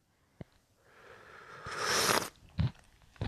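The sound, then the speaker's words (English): An airy slurp of piping hot coffee swells for about a second and cuts off, followed by a quick gulp and a few small mouth clicks. No one speaks. “Ah, coffee. Still piping hot, by the way, so apologize for the slurping.”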